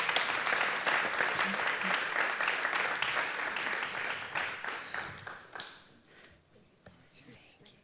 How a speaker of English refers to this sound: Thank you, guys. Round of applause.